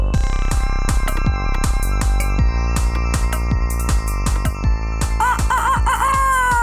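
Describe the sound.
A rooster crows cock-a-doodle-doo near the end, its wavering call rising over loud, steady music with a regular thumping beat that runs throughout.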